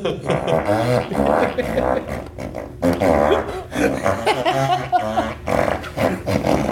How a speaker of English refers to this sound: Fart noises. We have fart noises. And back to Sid Caesar. And the Zoidberg. We have a fartophone here.